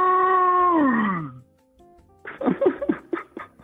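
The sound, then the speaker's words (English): A person imitates a dinosaur roar with one loud, drawn-out vocal cry that slides downward in pitch for over a second. After a short pause, several bursts of laughter follow. “I'm usually doing a voice modulation, but if you want me to give you a little roar real quick.”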